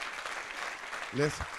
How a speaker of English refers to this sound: can we please applaud them? Yeah.